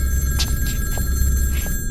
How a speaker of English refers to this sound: A phone on my bedside table begins to ring.